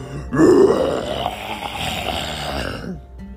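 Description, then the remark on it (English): A voice imitates the ginormous roar of Roger, a story character, as he nears a waterfall: one loud, gravelly, sustained growl lasting about three seconds, rising slightly in pitch before cutting off, with no other sounds around it. “As they got closer to the waterfall, Roger got ready and let out a ginormous roar.”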